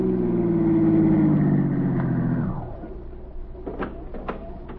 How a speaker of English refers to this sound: the same car stopped at the curb. A man stepped out.